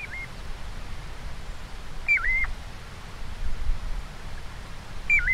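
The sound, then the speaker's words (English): Piping plover calls played from a recording in the Sibley app: three short, clear whistled notes, each dipping and rising, spaced a couple of seconds apart over a steady background hiss, with no one speaking. “I have the recording from the Sibley app.”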